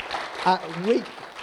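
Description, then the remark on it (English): A church crowd at Pukekohe Church claps steadily for the leader of a men's ministry small group, a dense, crackling wash of applause, while one voice lets out a brief rising call midway through. “Can we give this guy a big round of applause?”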